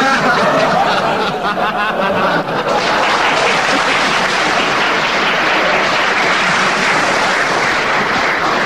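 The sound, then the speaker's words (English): A large audience applauds loudly and steadily, a dense, continuous wash of clapping that fills the whole stretch, with some laughter mixed in near the start. “The applause sways me to 4 points for that, and it's Tim Brooke Taylor.”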